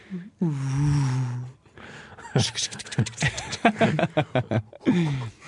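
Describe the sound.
A voice makes a sustained, droning hum with a slight downward glide, imitating an airplane, followed by a stretch of choppy, rhythmic vocal bursts and another short falling hum.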